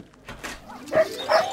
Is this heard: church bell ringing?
no